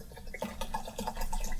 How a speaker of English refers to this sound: So we're going to take a shooter of fireball. Okay, that makes more sense. And dump that in there.